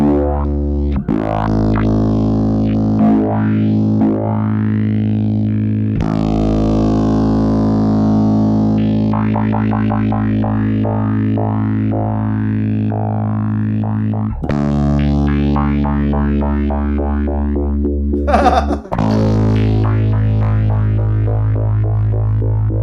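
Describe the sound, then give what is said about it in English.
A bass guitar runs through a low-pass filter pedal with no echo. Sustained low notes are swept and chopped into shifting rhythmic patterns, and the tone changes character several times. The playing is loud, with no talking. “But you can change the frequency, so it must be the patterns that it does.”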